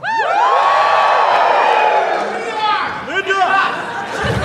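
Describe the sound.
A loud voice yells out a name above a noisy, cheering crowd, with rising shouts and whoops overlapping the steady murmur of chatter throughout.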